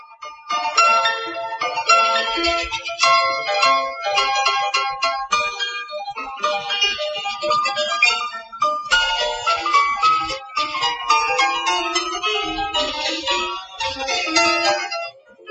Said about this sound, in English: So there you are. That is the ringtone. I've just created a ringtone without having to turn on another device and fire up another program.